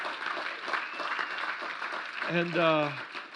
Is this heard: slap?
no